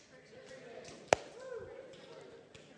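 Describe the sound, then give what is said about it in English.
One sharp, loud hand slap cracks out midway as audience members high-five their neighbours, set against a low, steady murmur of many people chatting. “Slap your neighbor high five and say, friction.”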